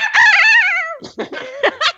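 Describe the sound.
A person imitates a rooster crowing: one loud, drawn-out wavering call lasting about a second, followed by a few short, choppy vocal bursts.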